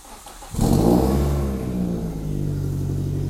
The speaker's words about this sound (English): Okay, now I'm just outside my home, my house. So now I see is my baby blue, my car. Okay. Let's start my car first. Hit engine.